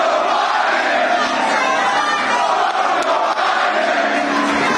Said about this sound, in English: They're shouting, let's go, Brandon. No, they're not. They're saying that. F Joe Biden is what they're saying there. All right. So, Donald Trump goes to Sneaker Con in Philadelphia.